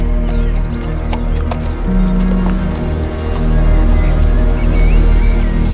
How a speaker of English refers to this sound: Christian takes the horse to a trot.